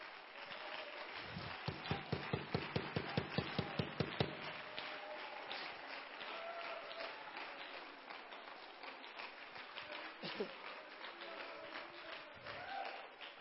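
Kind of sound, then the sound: crowd, audience clapping hands loudly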